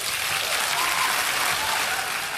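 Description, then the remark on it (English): A large indoor audience at the Labour party's women's conference in Liverpool applauds steadily, a dense wash of clapping hands that stays loud and even throughout, with no voices standing out above it. “He's been speaking at his party's women's conference in Liverpool, and claims about who helped create the issue got a round of applause.”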